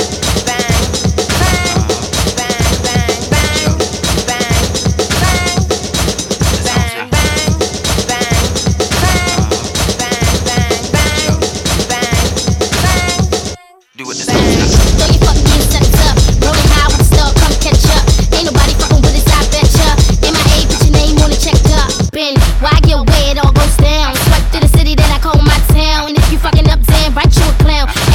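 A hip-hop track plays on Fade Radio as the throwback of the week, loud and dense, with punchy beat hits and thick bass under layered instrumentation; a brief drop to near silence splits it before the music slams back in.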